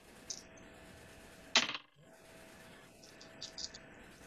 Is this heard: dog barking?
no